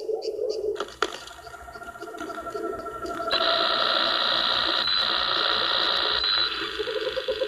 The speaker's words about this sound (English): The cameras, they got going four different directions. That's what you're hearing, all the static.